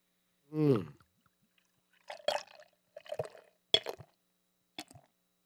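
Liquid is poured in a short rising glug, then several brief splashy, gurgling bursts follow at irregular intervals, moderately loud, with quiet gaps between them and no talking.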